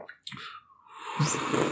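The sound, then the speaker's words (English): A loud slurp as someone sips hot coffee: a few soft lip smacks, then a long, airy sucking rush of breath and liquid that swells and holds to the end. No one speaks. “Not just that, but did you hear the slurp?”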